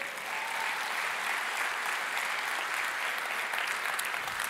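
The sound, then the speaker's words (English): An audience at a morning church service applauds steadily, a dense, even wash of many hands clapping at a constant loudness for several seconds without letting up, with no voices standing out. “That's a great place to clap this morning.”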